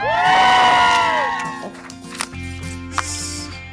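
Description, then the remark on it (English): An outdoor crowd cheers and whoops on a chilly morning, high voices swelling loudly and then falling away into a steady murmur over a low hum, with a couple of sharp clicks near the end. “Wonderful crowd out there on a real chilly morning.”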